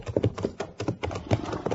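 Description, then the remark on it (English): The hooves of a horse that won a race from Deadwood to Cheyenne clip-clop in a steady, even rhythm, each hollow knock following close on the last. They are moderately loud, with no voices over them. “Is that the horse you won the race with?”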